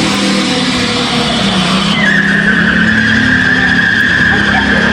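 A car's wheels spin hard inside a hospital emergency room in the immediate aftermath of an incident, tires squealing loudly and continuously, the pitch jumping higher partway through and holding as a sustained shriek over a heavy engine roar.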